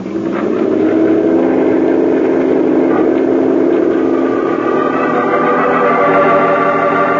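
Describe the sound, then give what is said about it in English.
A loud, steady motor roar drones continuously, with a sustained throaty hum and harmonic whine of a boat engine running at full speed on a river, with no talking. “Radio the other boats to fan out. Throw their spotlights on the river and on both banks. We'll take the center of the fan. Okay, full speed.”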